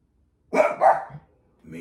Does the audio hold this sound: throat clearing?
no